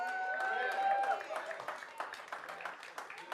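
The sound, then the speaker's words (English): A church audience claps steadily at the pastor's call to make some noise, the dense patter of many hands going throughout. Voices shout and whoop over it, loudest at the start before settling into scattered cheers. “Come on, make some noise if you have been sincerely wrong.”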